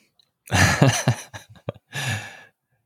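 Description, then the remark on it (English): Someone blows their nose: a long, breathy honk, a few short sniffing puffs, then a second blustery blow. No one speaks. “That's what I get for blowing my nose.”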